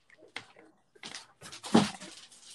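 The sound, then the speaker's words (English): A few short, restless noises from dogs scared by fireworks, soft snuffles and scrabbling followed by a sharper whimpering yelp, fairly faint, with no one talking. “There's fireworks and my dogs are about to lose their shit, so I'm going to have to let them in the room.”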